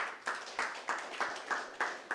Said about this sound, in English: Yeah, you can clap. You can praise God.